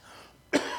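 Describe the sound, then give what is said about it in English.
A single sharp cough bursts in after a brief quiet stretch, its rough, breathy burst trailing off without any talking. “Today, notwithstanding, because I have coughs, but I don't give you pauses to think.”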